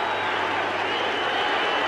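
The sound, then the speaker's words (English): A baseball stadium crowd in Arlington, on its feet with two outs in the ninth inning as Kenny Rogers nears a perfect game, cheering in a loud, steady roar of massed voices and scattered clapping that holds at an even level without pause for the full two seconds. “The crowd on its feet here in Arlington.”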